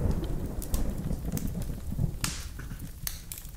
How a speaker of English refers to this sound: let's wait for the thunder to go by.